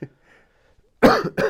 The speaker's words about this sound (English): Excuse me, I got a little bit of a cough.